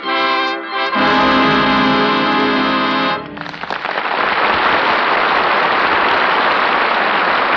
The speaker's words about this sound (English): Sounds funny, doesn't it? And I always thought that rain was lucky for me.